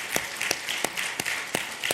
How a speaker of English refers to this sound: And these men have done a fantastic job. And can we just give them a round of applause? Because they really have.